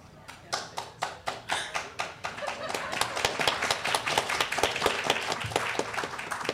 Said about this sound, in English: Least work I've done for the most applause in quite a while.